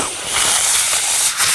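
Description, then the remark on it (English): A steady, breathy rush of air with no musical tone, a failed whistle by an adult being taught to whistle over the phone, coming out as a loud, continuous hiss, fluttering slightly and dipping briefly near the end. “Do you hear that? It's just air.”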